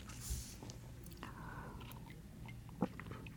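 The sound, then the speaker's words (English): A quiet, steady hum from a little air conditioning fan drones low and constant throughout, with a few faint crunchy clicks and a brief sharper tap near the end; no one speaks. “Yeah, we have air conditioning noise.”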